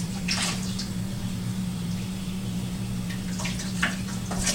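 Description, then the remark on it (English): Lukewarm tap water runs steadily over frozen swizzle sticks from a Tavolo Swizzle Stick Ice Mold, just taken from the freezer and held beneath the stream, with bright splashy bursts near the start and again toward the end, over a low constant hum. No one speaks. “I'm just going to run them under kind of lukewarm water real fast.”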